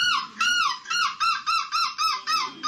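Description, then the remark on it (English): A man from the Netherlands mimics a seagull with a run of about eight loud, shrill, wavering screeches, each a bright rising-and-falling cry in quick rhythmic succession, clear; his winning entry in a seagull screeching championship. “… of the Netherlands has walked away with the title, and we do have his winning seagull screech here for everybody”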